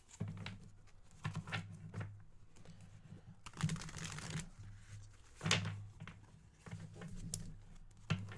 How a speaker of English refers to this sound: Just want to shuffle these a little bit. I really like how these cards shuffle. It feels really nice.